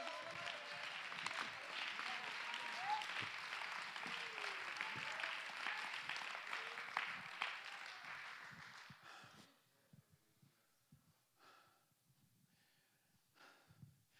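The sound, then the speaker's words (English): An audience claps hands to give God the praise, in sustained, dense applause with a few raised voices mixed in, steady for about nine seconds, then the clapping suddenly drops away to a few scattered, faint claps. “Come on, clap your hands, lift your voice, give God the praise.”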